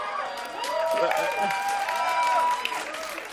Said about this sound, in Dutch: Dat het goed gesteld is met de filmkennis van mensen in deze kerk. Geef jezelf een grote applaus.